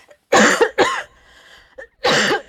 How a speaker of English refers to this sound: And behind me is like 30 pieces of, I'm going to cough, so. I'll edit it out.